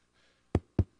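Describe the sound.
Three firm knocks on a door, evenly spaced, each a sharp thud with a quick decay, following a moment of near silence.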